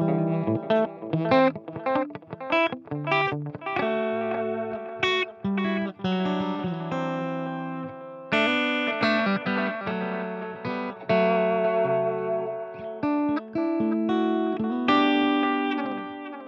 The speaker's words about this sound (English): I usually run it pretty much in the middle, maybe 1 o'clock or so. So, you know, if you just want your basic delay, then quarter note mode is your friend.